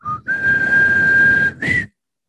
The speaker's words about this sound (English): I can't whistle.